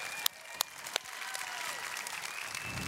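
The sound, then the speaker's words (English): A church audience clapping together as loud as it can so that people watching the live stream can hear, in a dense, steady roar of applause, with a few sharp individual claps standing out early on; no one speaks. “Can we clap loud enough so that people online can hear us?”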